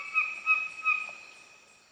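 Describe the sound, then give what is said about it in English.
A songbird sings slow, organ-like notes in a forest, three soft swelling pulses over a sustained, ringing tone that gradually fades, heard alone. “It sounds like someone's improvising on an organ back in the forest, just slowly doing these notes, these little trills and grace notes and chords”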